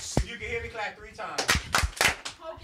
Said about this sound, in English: Mic check. You can hear me clap once. You can hear me clap two times.